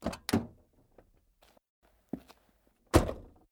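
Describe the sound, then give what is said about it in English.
An adult climbs out of a car: a couple of heavy door thunks, a few soft footsteps, then a final solid slam of the door shutting. No one speaks. “And the grown-up gets out.”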